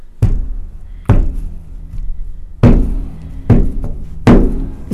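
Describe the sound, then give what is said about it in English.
Five soft, dull thuds land in an uneven, halting rhythm, imitating the limping footsteps of someone walking with a bad leg. They are moderately loud, each fading quickly, with no talking. “You know, like, I don't know how well that would get picked up, but basically soft bang, soft bang.”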